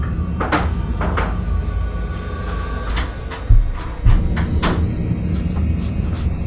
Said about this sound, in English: Oh, God, he's going in your kitchen. Oh, God. Who is this guy? He's going through your kitchen drawers.